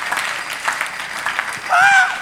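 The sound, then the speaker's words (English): An audience claps together for the Lord in a steady, dense burst of applause that carries on throughout, with a brief high-pitched vocal or whistle-like sound rising near the end. “Give the Lord a clap of faith.”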